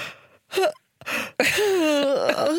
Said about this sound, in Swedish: Så börjar man bara, okej, okay, en gäspning, så bara.